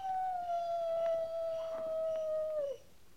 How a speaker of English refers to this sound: That's just a coyote. Just a coyote. You act like it meant something, Captain.